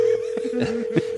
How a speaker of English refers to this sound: Phone is ringing